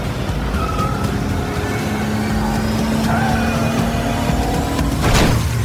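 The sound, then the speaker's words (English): A Ferrari's engine roars steadily while tires squeal and whine in shifting pitches as the car, entering a curve too fast, catches the soft shoulder with its rear wheels and spins out of control, ending in a sudden harsh burst of noise near the close. “The rear wheels caught the soft shoulder, spinning me out of control.”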